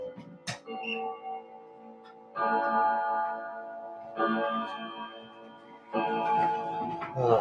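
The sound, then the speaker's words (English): A clock chimes nine o'clock, with three resonant, bell-like strikes about two seconds apart. Each strike rings out with rich overtones and hums on as it slowly decays. “It's got a few more chimes left. Yeah, of course, it's 9 o'clock.”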